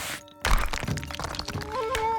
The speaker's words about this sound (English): As he fell, the priest's flask knocked against the rock, bursting open. Drops of water splashed out.